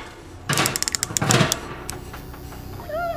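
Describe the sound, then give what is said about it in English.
A quick, uneven series of sharp knocks on a wall, loud for about a second, with one more knock shortly after, then a brief high, wavering tonal sound near the end. “Keep knocking the wall.”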